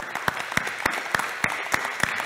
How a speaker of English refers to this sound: Amen. Let's give the Lord a hand clap of praise today.